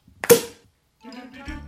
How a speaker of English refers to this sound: So let's see what Don has to say today, what his pet peeve is, after he pours us all a glass of champagne. So Don, pop the cork.